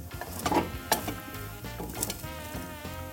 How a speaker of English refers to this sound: Anyway, to get you in the mood, I'm recording this in Scotland in front of an absolutely roaring log fire. I'll give that a bit of a... Can you hear that?